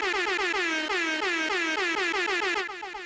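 A loud, rapid-fire string of air horn blasts, each short burst sliding downward in pitch and repeating nonstop, with no talking, easing off slightly at the very end.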